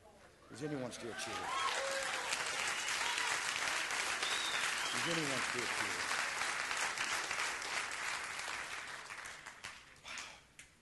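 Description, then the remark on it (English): A large church audience, standing, bursts into sustained applause and cheering, steady and loud for most of the stretch, with a few voices shouting over the clapping before it fades at the end. “Is anyone still cheering?”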